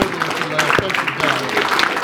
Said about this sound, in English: Let's give him one more hand clap welcome this morning.